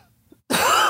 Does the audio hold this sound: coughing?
yes